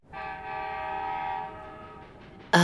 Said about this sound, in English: Is that a train I hear? It sounds like it's coming this way. Oh, I think you might be right. That does sound like a train.